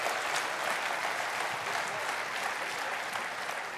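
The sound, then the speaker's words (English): A crowd gives the Lord a big hand clap, a dense wash of many hands clapping at once that holds at an even, fairly loud level throughout without fading. “So give the Lord a big hand clap.”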